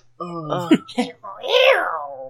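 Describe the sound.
A person imitates a cat, giving a couple of short, nasal meows followed by one longer, drawn-out meow that rises and falls in pitch, fairly loud.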